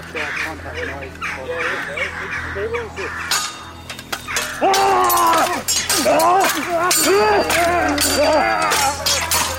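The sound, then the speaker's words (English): Alarmed crows give harsh, raucous calls in a loud, overlapping chorus, growing more frantic midway through, with sharp glassy cries over a low steady rumble; a voice speaks faintly at times. “Alarmed, they scream with cries like broken glass.”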